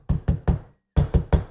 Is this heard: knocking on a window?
yes